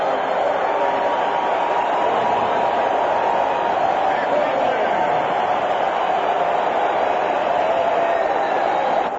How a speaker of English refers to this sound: Mark McGwire with number 56. Oh! And he has tied the National League record. And they are going berserk at Pro Players Stadium. Look at this crowd.